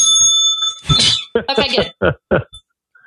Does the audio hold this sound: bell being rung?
yes